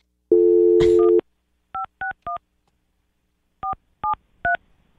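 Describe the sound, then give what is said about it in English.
A steady phone dial tone cuts off as a call is dialed, followed by six short touch-tone keypresses in two quick groups of three, clear with silence between them. “What's the over and under on him picking up?”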